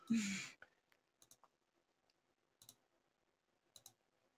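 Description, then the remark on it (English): Sharp little clicks, mostly in quick pairs spaced about a second apart, like a mouse button being pressed, following a loud breathy exhale at the start, made during a phone call. “I'm sure they can hear it on the other end, just like click, click, click, click, click.”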